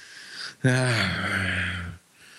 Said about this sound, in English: He's snoring into the microphone now.